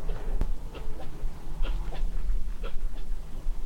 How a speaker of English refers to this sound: Strange noise, I think that's a sheep. Cough. Yeah, a sheep coughing in the field. Hiccuping.